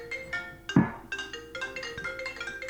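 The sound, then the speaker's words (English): A phone ringtone plays a bright, repeating electronic melody of short tonal notes, moderately loud, with a brief thump partway through and no talking. “Is that the bat phone?”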